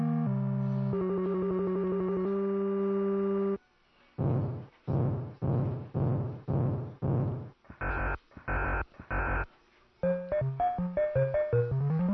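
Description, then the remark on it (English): Classic arcade video game sound effects from Donkey Kong with no talking: stepped electronic tones, a steady run of buzzy rhythmic pulses, three short bright blips, then a quick flurry of chirpy bleeps. “That, of course, was Donkey Kong.”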